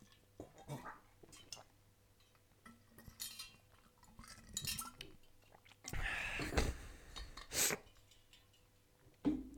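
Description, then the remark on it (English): Ice cubes clink and rattle in a wide-brimmed glass of cold water as someone drinks, a scattering of sharp, bright taps mixed with sloshing, swallowing and wet mouth noises, with a louder burst of clatter toward the end. “Anyway, so yeah, I really love water, right? and it's cold, and I love putting ice in it, but how fucking annoying is it when you're drinking, and that's quite a wide brim, and you're drinking, and all the ice gets in your mouth.”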